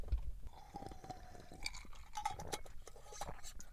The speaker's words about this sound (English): Let me get a sip of this lightning.